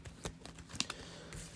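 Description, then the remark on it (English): A deck of cards being shuffled, with quick papery riffles and soft slaps in short irregular bursts, fairly quiet and with no talking. “So, give me a second here. I'm going to shuffle up my deck.”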